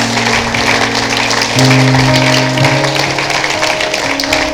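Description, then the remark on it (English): An audience gives a hand clap of honor, clapping steadily in a dense, crackling wash of applause lasting the whole time, while low sustained organ-like chords hold and shift underneath. No one speaks. “Why don't we just give them a hand clap of honor right now?”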